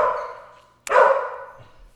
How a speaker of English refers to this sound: And then the dog barked.